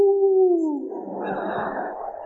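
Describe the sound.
A man's voice imitates an owl hoot, mimicking how some people respond when asked to give the Lord a shout: a single long, low "ooh" that slides downward in pitch and then trails off into a breathy rush of air.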